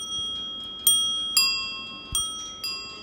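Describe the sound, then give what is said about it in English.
A ding-dong bicycle bell on a Princess model bicycle, a loop-frame bike with a wicker basket on the front, rings with four bright metallic strikes about half a second apart, each chime ringing on and fading slightly, clear with no voices. “It's got the ding-dong bell.”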